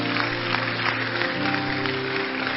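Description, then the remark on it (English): An audience claps for Jesus continuously in a dense, steady patter, with sustained low musical tones droning underneath and no voices. “Hey, clapping for Jesus too is gentle like that.”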